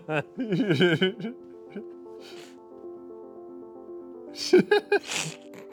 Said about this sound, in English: COVID, this is an average sneeze.